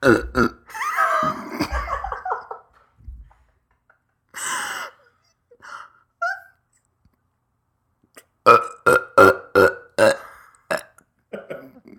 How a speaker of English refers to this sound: So I had this burp and I was trying to